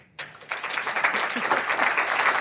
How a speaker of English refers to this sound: Maybe I'll just, you can applaud or whatever you want to do. Applaud if you liked the format we used today.